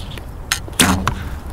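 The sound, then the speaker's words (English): An arrow is loosed with a brief swish at an archery range in Golden Gate Park, San Francisco, and lands moments later in a target with a sharp, solid thwack, followed by a faint rattle, against quiet outdoor ambience with no talking. “we are about to shoot some arrows.”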